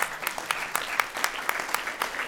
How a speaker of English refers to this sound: Go ahead and give the Lord a hand clap this morning.